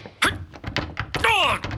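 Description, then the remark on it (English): A locked door thudding as someone tries to force it: a few dull, uneven thunks, then a brief wavering, higher-pitched strain before a final knock. “Oh, the door, it's locked tight.”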